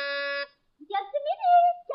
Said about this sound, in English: And I'll press the buzzer.